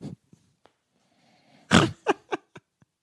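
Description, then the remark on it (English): Squelchy fart-like noises made with a woman's breasts on a couch: one long loud blurt followed by several shorter, quicker bursts, with faint breathy sounds before and no talking. “I saw those big tits and I was just like, hey, why don't you show me how those big tits fart?”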